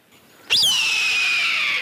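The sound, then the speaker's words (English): A single loud, raspy red-tailed hawk scream bursts in after a brief quiet moment, starting high and sliding down into a long, hoarse, sustained cry with no talking. “Almost every sound effects studio out there uses the call of the red-tailed hawk instead of the eagle call when they're doing movies.”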